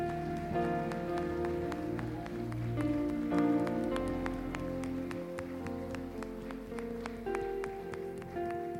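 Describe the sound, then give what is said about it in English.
A church audience claps their hands in praise of Jesus over sustained organ-like music, the sharp claps scattered and overlapping in a dense, steady patter that holds at an even loudness throughout. “Come on, can you give him one more hand clap of praise today?”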